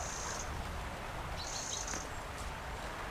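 A wren's harsh alarm call rattles out twice in high, buzzing bursts, each about half a second long, among ivy-covered willows in winter, over a steady rushing outdoor background.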